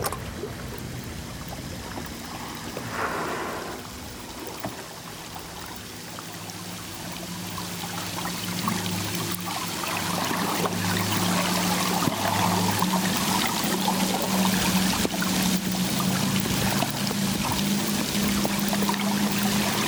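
Murky underwater ambience in the ocean, recorded on hydrophones from a boat as two blue whales pass by its stern, with some engine noise: a steady wash of watery noise, low humming drones that rise and fall, and scattered clicks and crackles, continuous and fairly loud throughout with no voices.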